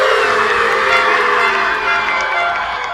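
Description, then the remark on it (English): A large stadium crowd at a Quidditch match cheers for Gryffindor, with boos from Slytherin, after Gryffindor scores, in a loud, continuous roar of many voices, a dense wash of sound that holds steady for the whole three seconds. “The stadium erupts in cheers for Gryffindor and boos from Slytherin.”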